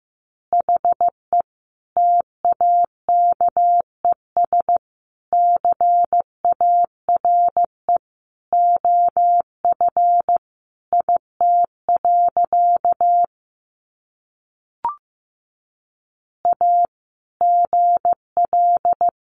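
Morse code practice tones sending easy phrases at about 15 words per minute: a single steady mid-pitched beep keyed into short and long elements, grouped into words with pauses between, plus one brief click.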